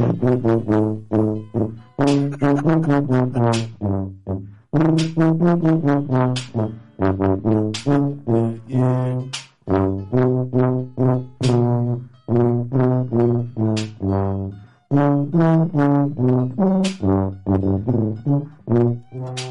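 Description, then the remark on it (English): A low, buzzy tuba plays a solo melody of short, detached notes grouped into phrases with brief pauses between them, rich in bright overtones and fairly loud, with no talking. “tuba solo.”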